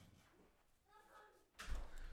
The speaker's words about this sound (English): Close the door.